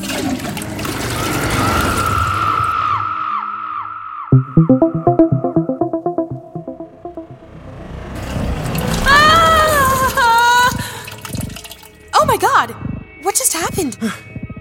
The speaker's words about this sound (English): Oh, I have to tell the toilet where we're going before we flush. I can't decide if I hope you're joking or telling the truth. Hit the handle and find out.